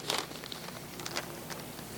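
A brown paper school lunch bag, not empty, crinkles and rustles in a few crisp bursts, loudest at the start, then lighter scattered crackles over a low steady hum, with no one talking.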